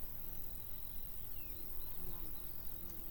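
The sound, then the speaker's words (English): A burrowing wasp, a large wasp known as Nina Nina in the Alto Plano of Bolivia that hunts caterpillars on quinoa plants, buzzes steadily for a few seconds, a continuous low droning hum set against soft, noisy outdoor background, with faint higher chirps drifting in and out. “One of these good insects is a type of burrowing wasp.”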